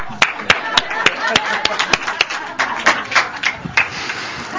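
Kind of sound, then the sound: crowd, audience clapping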